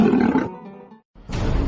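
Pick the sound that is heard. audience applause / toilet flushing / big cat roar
big cat roar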